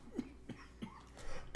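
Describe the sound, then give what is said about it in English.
A run of short, hoarse coughs, three quick bursts followed by a sharper, louder one at the end, with no talking. “Sorry for the cough.”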